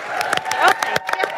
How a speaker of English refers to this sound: Whoa. Look at that applause. They like you.